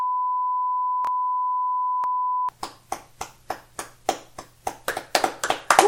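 A steady high-pitched censor beep holds for a couple of seconds, then two people break into aggressive clapping, sharp uneven claps that grow faster, denser and louder toward the end.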